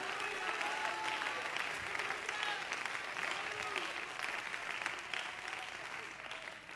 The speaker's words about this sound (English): If you want it, clap your hands and give him praise.